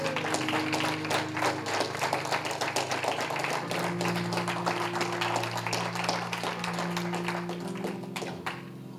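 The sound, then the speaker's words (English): A crowd applauds steadily for about nine seconds as a round of applause for God, dense claps forming a continuous wash, while sustained organ-like chords hold underneath and shift partway through. “Give God a nice round of applause.”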